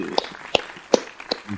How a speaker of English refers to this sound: There we go. Look, we got the applause clap. Let's do it again.